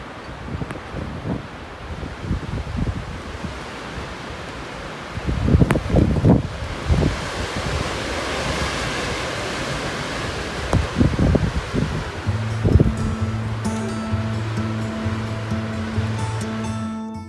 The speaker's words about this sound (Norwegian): Og denne dagen så tror jeg det skal handle om en liten storm.